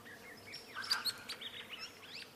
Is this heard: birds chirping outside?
yes